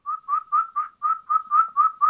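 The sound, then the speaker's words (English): Turkey kee-kee calls: a quick, evenly paced run of about nine short, high, flute-like whistled notes, each clear and fairly loud, with no talking over them. “So it's high, very, very high pitched, almost, you know, flute like or almost songbird like, and very, very fast paced.”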